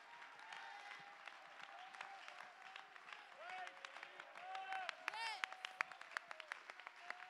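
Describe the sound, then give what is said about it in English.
A crowd claps hands to give praise, in a dense, uneven burst of sharp slaps that lasts several seconds, with raised voices calling and singing out over the applause. “Everybody in the building, clap your hands and give him praise.”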